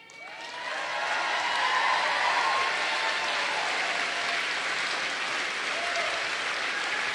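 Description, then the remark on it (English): A large crowd at a Pennsylvania political rally breaks into sustained, loud applause with scattered cheers for Senate candidate Fetterman, rising within the first second and holding steady as a dense wash of clapping for several seconds. “Yeah, well, let me just, because they're cheering for him, but the Attorney General is Shapiro.”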